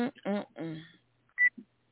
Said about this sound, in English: what was that? I just heard a beep in my ear. It's not on my end.